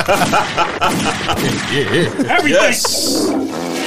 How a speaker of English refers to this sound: Give me some gunshots.